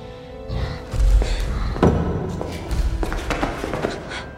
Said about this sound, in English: This door closes. It will not open again.